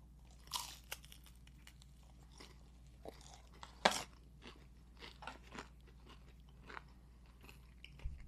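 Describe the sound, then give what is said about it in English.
Someone bites into a slice of Morgan Moose's Peep pizza ("Peepsa"), topped with a Peep and pineapple, with a sharp crunch, then chews in soft, irregular crunching bursts, a louder bite near the middle standing out against a low steady hum. “We're going to try this.”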